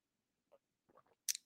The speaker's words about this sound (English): Stock down Tony Pollard as I take a sip of this tea.